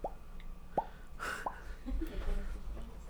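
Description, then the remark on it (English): A mouth imitating a fart: three quick, rising popping sounds in a loose rhythm, followed by softer mouth noises and breathy vocal sounds. “Tell them how your farts sound.”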